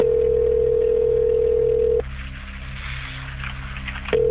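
A phone's ringback tone: a steady electronic burl for about two seconds, a pause, then the next ring starting. No one speaks, with a faint hum underneath.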